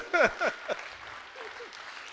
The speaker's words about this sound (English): I know you are struggling to clap. I know it's choking. It's choking really hard. I know. But try and clap. Try and clap for Jesus.